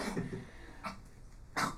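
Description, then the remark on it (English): A dog, Baxter, coughs in short, harsh bursts, with a rough hack at the start and sharper coughs later, moderately loud, with no talking. “No, he's just coughing.”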